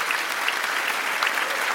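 Loud, dense applause from a large crowd filling the room at a talent show after a seven-year-old girl finishes singing, a steady wash of many hands clapping at once with no pauses and no voices standing out.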